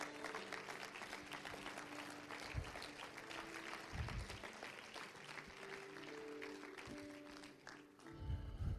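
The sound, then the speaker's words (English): An audience claps in praise in sustained, dense applause, many hands together filling the room, with scattered voices and low thumps mixed in before it tapers near the end. “Come on, give him a hand clap of praise.”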